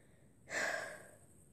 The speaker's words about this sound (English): Okay, I needed to breathe because I haven't been breathing very well for the past minute. Because I've been talking so much. Like, that's how I get when I talk about things that I like. I will stop breathing.